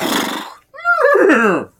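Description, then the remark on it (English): An angry horse at the horse races lets out a harsh, breathy snort, then a rough, voiced squeal that wavers in pitch for about a second before cutting off. No one talks over it. “Listen, this one sounds angry.”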